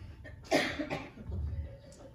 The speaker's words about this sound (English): Does a cough count as a laugh?